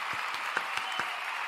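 A short crowd reaction: a steady wash of applause and cheering noise, with a few sharper claps popping out of the roar at an even level, and no talking.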